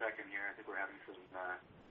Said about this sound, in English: Well, we seem to be getting an echo effect here. I don't know if somebody has their sound turned on the show, baby. Let me fix it.